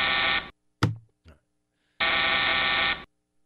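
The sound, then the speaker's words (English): Two loud, harsh buzzer sound-effect blasts played on a talk show: a short half-second burst, then a brief shout-like vocal sound, followed by a longer buzz lasting about a second. “You can shove that buzzer with a sun, don't you?”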